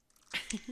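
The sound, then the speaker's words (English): A single quiet sneeze: a sharp, hissy burst of breath followed by a brief voiced tail, lasting well under a second. “And bless you, my child.”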